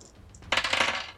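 An action die and two challenge dice tumble across a hard table in a quick burst of rattling clicks and taps, fading out within about a second, with no voices; they land on 7, 5 and 10.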